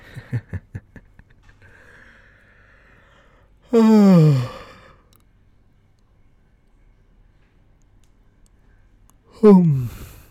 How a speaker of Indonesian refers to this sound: Baru mulai udah nguap gua.